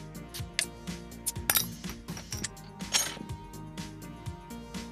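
A drink is poured briskly into a glass, with a run of bright clinks and splashy bursts over a steady wash of sound; no one speaks.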